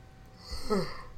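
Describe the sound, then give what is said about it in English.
A single short yawn: a quiet, breathy exhale with a brief voiced, wavering tone in the middle, heard on its own without any talking. “I don't know why I just yawned there.”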